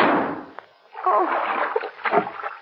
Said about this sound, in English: It was his only way out, Margo. His body's fallen into the river.